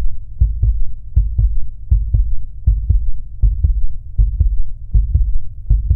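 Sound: baby's heartbeat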